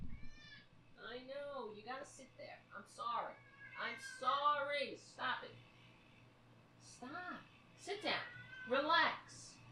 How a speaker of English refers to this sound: I'm sorry for those who are not a fan of the cat. coming back and interrupting the show. Some people are not fans.